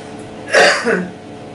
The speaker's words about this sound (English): Let's try the coughs again.